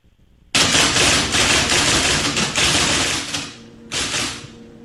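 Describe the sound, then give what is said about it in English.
Rapid, loud clacking of the keys of an IBM Selectrix typewriter runs nonstop for about three seconds, stops briefly, then returns in a shorter burst of fast strikes. No one speaks. “Is it a typewriter?”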